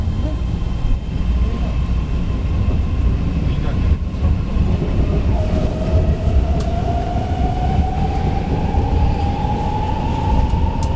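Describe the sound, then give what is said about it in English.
A BART rapid transit train from the airport rumbles steadily from inside the car, travelling underground and then overground up the peninsula, its electric motor whine rising smoothly in pitch halfway through as it accelerates, loud and continuous throughout. “Everyone keeps to themselves, the train hums underground and then overground again, up the peninsula.”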